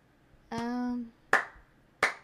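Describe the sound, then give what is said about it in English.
A short voiced tone is followed by two sharp, evenly spaced hand claps, slow and deliberate, each a crisp snap that fades quickly into quiet. “Slow clap? Not a slow clap moment?”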